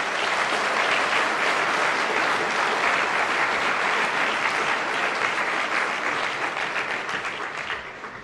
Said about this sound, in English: And one more round of applause for the Minister today. Thank you.